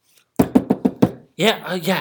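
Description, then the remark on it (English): Five quick, evenly spaced, loud knocks on a door, followed right after by a voice speaking. “Cut to 3 months later, all of a sudden he's waiting for a package and he gets a knock on the door.”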